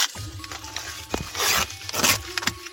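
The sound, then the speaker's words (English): A KFC sandwich's paper pouch is opened, with a run of crisp crinkling, scraping and short tearing rustles coming in uneven bursts, loudest toward the middle and end. “I'm going to open up the wrapping right now.”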